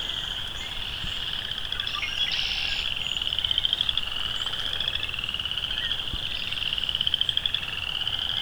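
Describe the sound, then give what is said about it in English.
A dense chorus of western chorus frogs fills about a square kilometer of marsh, their rapid trilling calls overlapping continuously, with no voices present. “A lot of chorus frogs. Probably western chorus frogs.”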